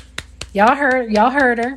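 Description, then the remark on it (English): Sharp, dry slaps of a hand striking an arm, standing in for clapping: about seven quick smacks in an uneven rhythm, the later ones sounding over a loud, drawn-out voice. “I'm just going to hit my arm and just pretend like I'm clapping.”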